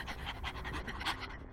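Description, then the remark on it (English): Dogs, coming out from under a porch, pant rapidly and steadily, a quick rhythmic series of breathy huffs repeating about five times a second with no voices. “The dogs came piling out from under the porch.”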